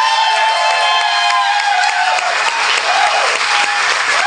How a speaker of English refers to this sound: I don't know why you're, I mean, I know you're applauding that because it's a thing that ended that lasted 5 minutes, but. It wasn't a good thing.